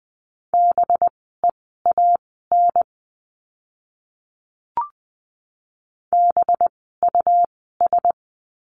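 A Morse code practice word for the letter b, sent at 20 words per minute: a steady, mid-pitched tone beeping in quick dots and dashes. Two bursts are split by a pause broken only by a single click.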